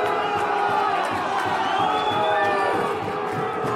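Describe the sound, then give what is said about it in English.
A large rugby stadium crowd at a Stormers versus Connacht match roars and cheers steadily, a dense wall of voices with rising shouts and whistles lifting over the din, loud and sustained throughout. “As you can hear, the crowd are getting into it because the Stormers are still trying to slow the game down.”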